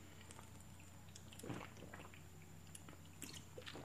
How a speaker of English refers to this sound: So now we've gotten through about 40 minutes, and I'm three-fourths of the way through with my Red Bull Simply Cold. I'm going to take a big slug right now.